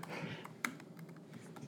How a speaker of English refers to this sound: I hope everyone likes my typing sounds, by the way.